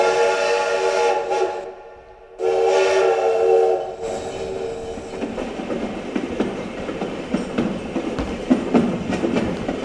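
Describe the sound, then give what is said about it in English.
A steam train whistle blows loudly in two long harmonic blasts, separated by a short gap, then gives way to the steady rumble and clatter of a rolling train, the Illinois Suffrage Special, bound for the nation's capital. “All aboard the Illinois Suffrage Special, direct to our nation's capital, this train is bound.”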